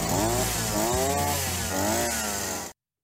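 A small two-stroke string trimmer (whippersnipper) engine revs up and down in a few surges, its buzzy, tinny whine rising and falling loudly before cutting off abruptly.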